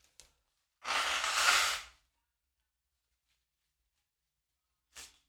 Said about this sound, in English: Hold on. I gotta blow my nose. Hold on.